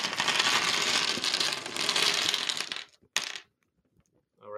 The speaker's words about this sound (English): All right, we got them all out. good. I can see the dice roll in our audio signal.